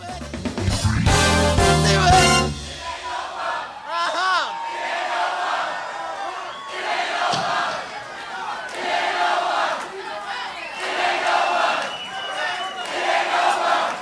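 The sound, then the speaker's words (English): A loud burst of band music cuts off, then a large concert crowd chants together in rising and falling waves, voices swelling and repeating the phrase "it ain't over" over and over. “He needed the crowd chanting, it ain't over, to use in editing later.”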